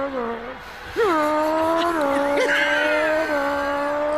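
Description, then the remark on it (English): A Spanish-language football commentator imitates a fast car engine with his voice during a Venezuela player's run, holding a loud buzzing drone for about four seconds with small pitch jumps like revs or gear changes. “saying what was happening, this Spanish commentator decided to do some sound effects instead of something moving really fast.”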